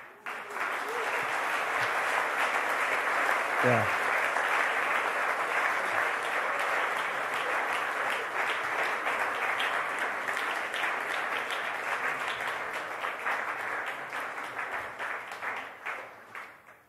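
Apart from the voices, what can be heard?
audience applauding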